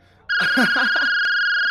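A phone's electronic ringtone starts abruptly, a steady, bright, high-pitched tone that holds loud and unbroken while a voice briefly speaks underneath it.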